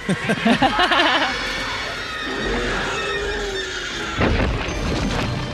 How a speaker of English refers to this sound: Oh. Yeah. That's the explosion.